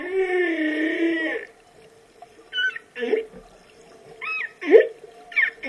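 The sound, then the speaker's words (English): Humpback whale song: a long, wavering harmonic moan, then a series of shorter squeals, chirps and low grunts with brief pauses between them, over a faint watery background hum. “These magnificent mammals are known for their acrobatic leaps from the sea and their complex singing patterns, which sound a little something like this.”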